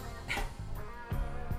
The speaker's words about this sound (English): He's got something. He's got a bouncy ball. Give it back! Dude, you gotta bounce all over the house! What happens when you feed a dog a bouncy ball, huh? Hey, don't get jumpy!